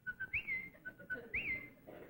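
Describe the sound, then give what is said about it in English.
A falconry return whistle, used when hunting, sounds twice in a row: a few short, steady high pips, then a quick rising-and-falling swoop. It is fairly clear over a low, rumbling background. “Another thing, when you're hunting, you have to have a return whistle. Mine is a...”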